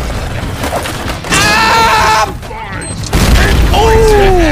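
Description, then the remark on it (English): A video game C4 explosion: two loud, rumbling booms with dense low-end roar, each lasting about a second, with voices and game sounds mixed in. “I'm coming in with a C4, fellas.”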